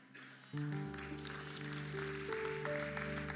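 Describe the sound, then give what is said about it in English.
A church audience claps steadily during a sermon in a dense, continuous wash of applause, while sustained keyboard chords swell in underneath after the first half second and hold to the end. “Thank you for that cute clap offering, but I'm very serious, because if you really believe that, you would be shouting right now.”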